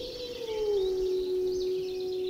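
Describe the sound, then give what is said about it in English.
Wolves in Yellowstone National Park howling, led by one long, smooth mid-pitched howl that dips slightly and then holds steady for a couple of seconds, with a faint airy hiss behind it. “And as Jennifer Jarrett explained, when it comes to howling wolves, scientists say there's a time for every purpose under heaven.”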